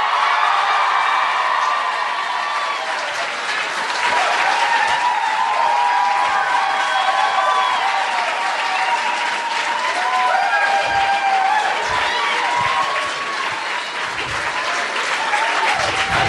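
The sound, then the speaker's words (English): A crowd applauds loudly and steadily for about sixteen seconds, dense clapping mixed with cheers, whoops and excited shouts rising over the top. “It says, crowd go wild.”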